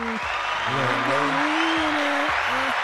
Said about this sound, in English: Round of applause, niggas.